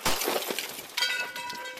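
The rear window of a police cruiser is smashed with a metal pole in Fulton, Kentucky, in January 2017: a loud crash of breaking glass, then a second sharp impact followed by bright ringing and tinkling shards. No one speaks.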